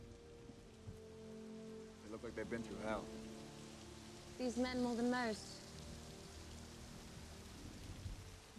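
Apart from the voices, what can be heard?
rain falling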